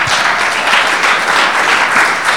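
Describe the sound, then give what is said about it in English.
A crowd applauds steadily, a dense wash of many hands clapping at once with no gaps or pauses, sustained and fairly loud throughout. “Yeah, we can clap again.”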